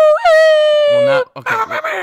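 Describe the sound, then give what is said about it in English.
A person howls like a dog, holding one long, loud, wavering high note for about a second before it drops off, followed by a burst of voices talking and laughing. “Oh my god, that sounds like a dying cat. Yeah, or the fact that you're trying to wake up all the dogs in the neighborhood.”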